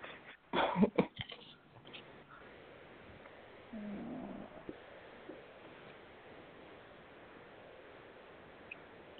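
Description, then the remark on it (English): A cat purrs in a short, rough burst of pulsing, then a quieter low hum follows a few seconds later over a faint background hiss. No one speaks. “And also my cat being loud, though.”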